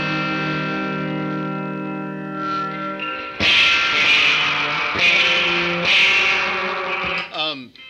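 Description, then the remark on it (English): An electric guitar played through a 1963 Fender reverb unit holds a ringing chord, then bursts into louder, brighter, slightly distorted chords with washy tails, ending on a quick sliding pitch drop. “So I bought this 63, and it's a nice reverb, you know. It sounds good.”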